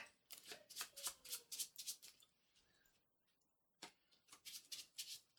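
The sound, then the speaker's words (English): Two bursts of a deck of cards being riffle-shuffled, each a rapid flurry of crisp papery flicks, separated by a short quiet pause. No one speaks. “I need to properly shuffle these because I just put all the ones that are on the bottom to the top.”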